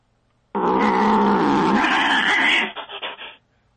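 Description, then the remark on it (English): A loud, fierce alley cat roar bursts in abruptly, sustained for about two seconds before breaking into a few ragged, snarling grunts that trail off. No talking. “What was that? Was the cat?”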